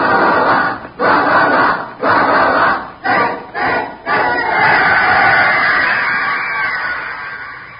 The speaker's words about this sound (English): The crowd roared.